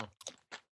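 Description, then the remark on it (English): Crunching of stale lemon-lime and garlic flavored chips: three or four short, dry bursts in quick succession, loud, with brief gaps of silence between them and no talking. “The flavor dust is still delicious. Even if the crunch is not.”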